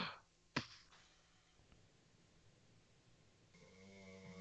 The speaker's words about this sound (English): Can you hear a snoring in the background?